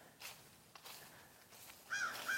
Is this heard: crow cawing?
yes